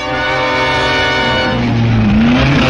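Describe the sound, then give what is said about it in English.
Vintage racing car engines, including white and blue American Duesenbergs, roar loudly and continuously, revving with rising and shifting pitch as the cars pass by during the first post-war French Grand Prix at Le Mans, no voices present. “De Palma goes off well, but the beautifully prepared white and blue American Duesenbergs are equally fast.”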